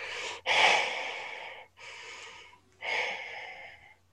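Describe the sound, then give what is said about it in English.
Heavy, raspy breathing over a comm call from an unknown number, three long drawn breaths in slow succession with brief pauses between, a faint steady hum underneath as if coming over a phone line. “You hear heavy breathing on the side.”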